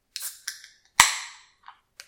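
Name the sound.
beer can being opened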